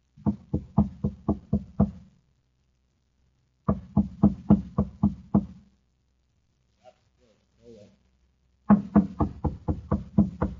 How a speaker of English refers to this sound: Now, on a side street in Kepler City on the planet Mars, a thin, stoop-shouldered man climbs a stairway at the side of a shabby machine shop. He knocks at the door.